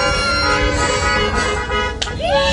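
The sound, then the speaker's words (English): Car horns honk as dozens of cars drive past a couple's home after their wedding ceremony, sustained blaring tones overlapping with a steady rumble of passing vehicles and faint cheering from the people inside the cars. “The people inside those cars cheered and honked their horns as they passed.”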